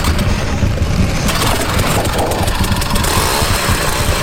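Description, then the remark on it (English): A power ice auger's small gas engine runs loudly and steadily inside an ice house, drilling down through a hole in the floor into the ice; a rough, buzzing rumble with rapid low pulsing and a hissy upper edge throughout, with no voices. “Without thinking, I grabbed my power out from the corner.”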